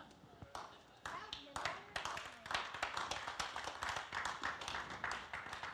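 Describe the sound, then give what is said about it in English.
A crowd breaks into applause, many hands clapping in a dense, steady patter that starts scattered and quickly builds, staying fairly loud throughout. “Now, I'm not sure if everybody applauding is agreeing that they are.”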